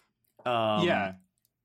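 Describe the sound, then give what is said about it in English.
A single voiced, croaking click-like noise lasting under a second, made by a human voice imitating the weird alien clicking noise of the Star Trek character Saru. It is loud and alone, with silence before and after. “Which, by the way, did y'all notice Saru had a weird clicking noise that he integrated into his portrayal?”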